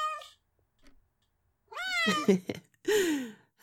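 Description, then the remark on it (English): A hungry cat meows loudly and insistently while being offered food, a short cry followed after a pause by two drawn-out, rising-and-falling meows in quick succession. “Fussy, fussy kitty.”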